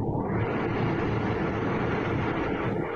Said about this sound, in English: It's like, we'll wait for this train to go away.